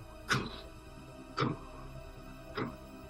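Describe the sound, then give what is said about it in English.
Three slow, evenly spaced footsteps far down a hallway, each a dull thud with a short trailing ring, a bit over a second apart, the last slightly softer, with no voices. “From far down the hallway. Sounds like footsteps.”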